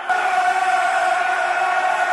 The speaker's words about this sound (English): The crowd are into this now.